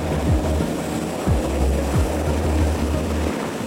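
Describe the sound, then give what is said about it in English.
A steady, loud rotor-and-engine drone of a helicopter in flight, heard from inside, flying 120 miles out over the open ocean off Guyana to an Exxon offshore oil production vessel, with a deep low hum and constant broad rushing noise throughout, and no voices. “120 miles, more than an hour by helicopter, straight out into the open ocean, floats one of Exxon's FPSOs, or floating production storage and offloading vessels.”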